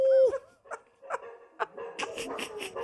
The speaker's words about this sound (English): Can our listeners hear the dogs barking, or is that just in my IFB? I think it, yes, but they're just piping it in for you. Sound like a pack of wolves, man. Ow!